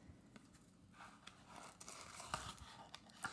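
Crinkly wrapping paper around a delivered package rustles and tears, with several sharp ripping bursts amid continuous handling and crumpling as it is unwrapped, no voices present.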